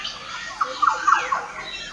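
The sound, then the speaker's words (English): A bird chorus with a black butcherbird and a figbird: a quick run of liquid, squawky calls rising over a faint hiss of background birdsong, with no talking. “So there's black butcher bird, which is that kind of liquid, that guy just there. Wow. And there's a fig bird as well.”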